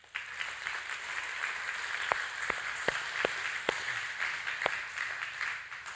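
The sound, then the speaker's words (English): An audience claps their hands together in a steady, dense wash of applause, with a handful of sharper, louder individual claps popping out above the crowd. No one speaks. They clap in answer to whether they feel forgiven of millions by their Heavenly Father. “And so how many of you, if by hand clap, would say that you feel like you've been forgiven of millions from your Heavenly Father?”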